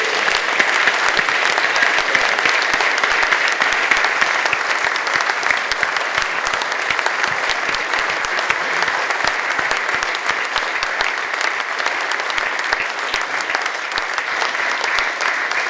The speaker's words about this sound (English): But you're a lovely man, and I think a big, big round of applause to them.